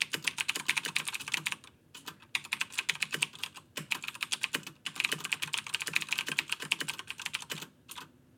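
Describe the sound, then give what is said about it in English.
Rapid, crisp clicking of a mechanical keyboard with clicky Green switches, similar to Cherry MX Blue switches, typed in steady bursts with brief pauses between them, fairly loud with no voices. “The keyboard that I have is a little percussive. I mean, here, I'll let you hear it.”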